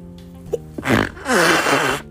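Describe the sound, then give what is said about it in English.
A loud sneeze: a sharp breathy burst followed by a longer noisy blast, over a faint steady hum, with no talking. “Excuse me. No one's got a sneeze or something.”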